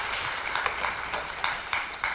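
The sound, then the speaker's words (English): A church audience applauds those baptized that day: a dense, steady wash of many hands clapping with a few sharper individual claps standing out, sustained at an even, moderate loudness with no talking over it. “Ladies and gentlemen, why don't we congratulate one more time all those who are baptized today. Give them a round of applause.”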